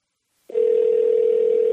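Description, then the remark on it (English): A phone line ringing tone while calling a friend, waiting for an answer: a single steady electronic beep-tone that begins after a short silence and holds at one even pitch, loud, with no voices. “He's not even going to answer the phone.”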